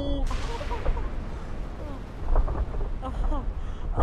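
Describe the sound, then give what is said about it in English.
A building brought down by explosions collapses with a loud, continuous deep rumble that rolls on for several seconds, with crackling debris and faint voice-like sounds breaking through above the roar. “Is that building collapsing?”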